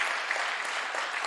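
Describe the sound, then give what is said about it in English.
An audience in a church claps steadily, celebrating money raised for Hills Academy. It is a dense, even wash of many hands striking at once with no voices over it, holding a constant loudness throughout. “That's a good spot to clap.”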